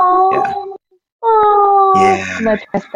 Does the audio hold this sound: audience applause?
no